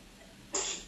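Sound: sneeze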